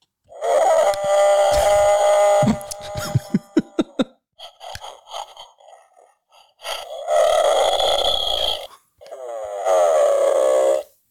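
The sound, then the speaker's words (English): A loud, electronic Bigfoot call from an Expedition Bigfoot emergency Bigfoot sound machine: long, wavering howls and moans, broken midway by a quick run of sharp knocks and grunts, then two more drawn-out wails. “Sent us some Bigfoot socks, stickers, and also an emergency Bigfoot sound here. I'll play a couple for you.”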